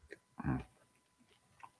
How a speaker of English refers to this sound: It's a good joke, but I can't respond because I'm actually chewing the pizza.